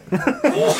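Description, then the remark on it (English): A single sneeze, a quick voiced catch of breath followed by a sharp, noisy burst that lingers briefly before cutting off. “Bless you.”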